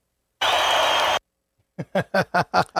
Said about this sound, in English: The crowd, and the crowd roars.